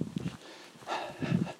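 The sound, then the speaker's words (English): A dog snorts and huffs in a few short, breathy bursts, with a louder snuffling pair near the end and quiet pauses between. “I can't call the dog a motor, really, can I?”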